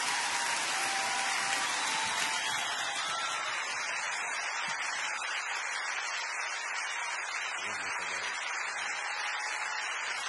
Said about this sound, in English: So big, you know, standing ovation. It brought the house down at a Christian megachurch.